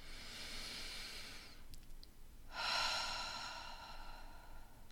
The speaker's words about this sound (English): And with that, let's close this episode by taking a heart connecting breath together. Breathing in.